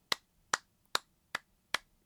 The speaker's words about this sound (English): Golf claps.